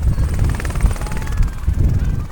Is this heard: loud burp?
no